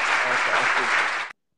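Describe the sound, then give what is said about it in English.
A loud burst of crowd applause, dense and steady, with some voices mixed in, lasting over a second before cutting off abruptly into silence. “Now the applause is going to work.”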